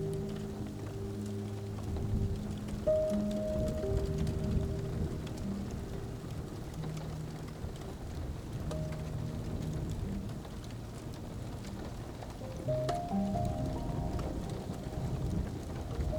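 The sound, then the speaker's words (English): Steady rain patters against a window, a dense continuous wash of droplets with low rumbling underneath, even in loudness throughout, with no voices. “You hear the crackling fire once more, and the rain on the window.”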